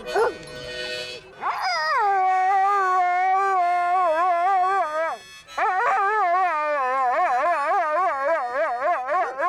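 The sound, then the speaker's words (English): An Akita-Chow mix dog from Littleton, New Hampshire howls loud and sustained in a best-singer contest at a dog party: two long, wavering, sing-song howls separated by a brief pause, after a short yelp at the start. “We have a singer in the crowd. Otis, what do you think, bud? Want to sing?”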